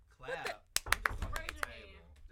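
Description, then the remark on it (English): Several quick, sharp knocks of knuckles on a tabletop, fairly loud, rapping in an uneven burst of about five or six while a person talks over them; the knocking is used to buzz in during a Jeopardy game. “How we gonna raise your hand? I'm knocking.”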